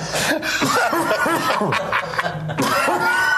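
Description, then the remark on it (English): A stifled cough fit from trying too hard not to cough: a rapid string of choked, voiced bursts and sputters, fairly loud, almost like suppressed snickering, lasting a few seconds with no talking. “Now, is this a result of trying too hard to not cough?”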